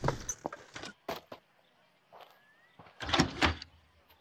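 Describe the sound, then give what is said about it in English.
A carriage door clunks and rattles open, with a few sharp knocks, a faint drawn-out creak of the hinge, then a louder scraping thud as it swings wide. “open my carriage door and help me out.”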